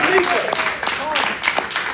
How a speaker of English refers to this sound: Let's give Until Freedom a round of applause.